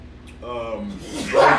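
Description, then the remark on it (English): A single sneeze: a rising, voiced intake that falls in pitch, then a loud, noisy burst as it breaks, over a faint steady hum. “Bless you. Bless you.”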